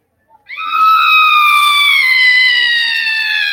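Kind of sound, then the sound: sound effect, scream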